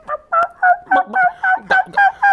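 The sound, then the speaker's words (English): A turkey gobbles, a fast rattling run of about nine throaty, warbling notes in quick succession, loud and clear with no talking over it. “But anyway, so I was up in Sugar Grove, went turkey hunting.”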